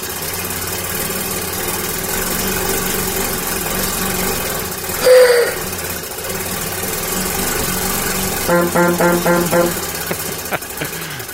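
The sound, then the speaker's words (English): A loud, steady mechanical chugging and rattling from a hand-cranked giant wooden box with gears and cranks, imitating an old Model T car engine, with a brief whine around the middle and a burst of rapid rhythmic clacking near the end, heard alone. “It's a giant wooden box with gears and cranks. And you turn the lever, you crank the lever, and it just makes this awesome sound.”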